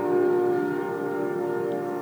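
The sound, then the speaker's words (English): A train goes by, its horn holding a loud, steady chord of layered tones over a constant rumbling hiss for about two seconds, with no voices. “I love this part of every podcast where the train comes by.”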